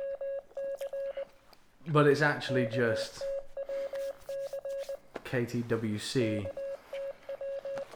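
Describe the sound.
Morse code beeps: a steady, mid-pitched tone keyed on and off in rapid short and long pulses, continuing throughout while a voice speaks over them in two brief stretches.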